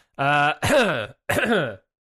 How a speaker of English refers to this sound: cut out my coughs. I never cough in the show. Cut out all my coughs, man, this, past and future.